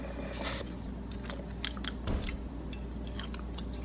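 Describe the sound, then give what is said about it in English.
Wet, crunchy biting and chewing of chicken wings, with several sharp crackling bites and smacking mouth sounds over a low steady hum, no one speaking. “Look at these wings”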